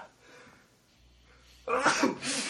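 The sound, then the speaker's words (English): A loud sneeze bursts out after a quiet, breathy lead-in, its harsh explosive blast trailing into a second noisy gust before fading. “hold on, I have to sneeze.”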